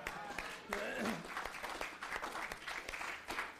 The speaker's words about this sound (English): Let's clap for them.